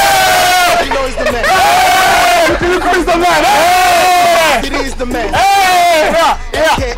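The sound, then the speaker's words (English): A loud group of men shouting and cheering together, their voices rising in bursts of rowdy, chant-like yells that fill the whole stretch without a pause. “But I ain't the only man in the crowd. I got my boys with me. Check that out.”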